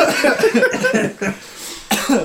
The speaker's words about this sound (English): Well, just a bit of the old cold and flu, mate. But coming out the other side of it, just a bit of a cough now.